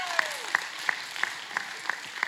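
An audience applauds in a steady wash of clapping, with sharper claps landing on an even, rhythmic beat about three times a second. No one speaks over it.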